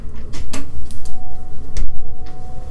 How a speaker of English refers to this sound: Let's open the window to see if we can hear sirens.